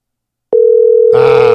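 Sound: telephone dial tone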